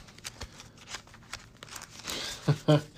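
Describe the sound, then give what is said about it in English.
Papery rustling and quick taps of a card game's decks, the player deck and the encounter deck, being shuffled, rising into a denser riffle near the end, with a brief murmur of voice at the close. “All right, so deck is shuffled, counter deck is shuffled.”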